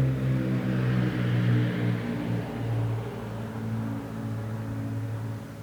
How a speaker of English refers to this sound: But something that the Gospel of Mark does, and this is what we're going to be focusing on today, is the Gospel of Mark, we'll wait for that plane to go over.